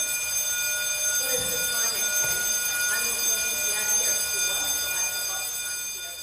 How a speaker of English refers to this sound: As is so often the case in an institution, you just get to a crucial moment and the fire alarm goes off.